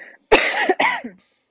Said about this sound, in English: And so sorry, I'm gonna cough again.